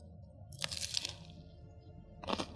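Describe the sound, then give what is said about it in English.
Two loud crunches of someone biting into a crisp BLT sandwich, the first longer and the second about a second and a half later, over a low steady background hum with no talking. “Ooh, good crunch, big.”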